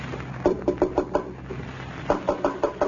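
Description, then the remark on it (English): Abner raps on the door of Lum's home in Pine Ridge in two quick bursts, five firm knocks, a brief pause, then four more, fairly loud against a quiet hum. “There's someone at the door. Listen.”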